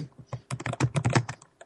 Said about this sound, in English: So are you typing an essay, Professor? No, I don't know. What is that? What was that? that was probably me searching for the name of that game, which it's not going to happen.